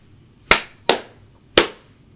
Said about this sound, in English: Well, I'm gonna just do a clap real quick to sync.